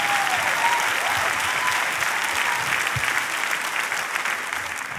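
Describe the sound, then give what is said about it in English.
An audience applauds steadily, a dense, loud wash of clapping that holds for several seconds, with a few scattered shouts rising above the hands before it eases slightly at the end. “Some of y'all are shouting because you're hoping that your Aunt Susie in Oklahoma hears this message.”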